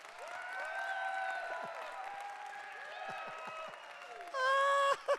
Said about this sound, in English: All right, on the count of three, even if you had a miserable time tonight, I want you to clap like you just won the Super Bowl. One, two, three.